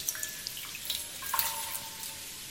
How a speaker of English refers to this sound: Can you feel the water running down onto your head? All the way high up from the ceiling down, splash, onto the top of your head and your neck.